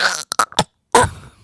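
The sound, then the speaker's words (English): A sneeze: a few short, breathy bursts build up, then a sharp, loud, explosive burst that trails off quickly, with no talking. “Bless you.”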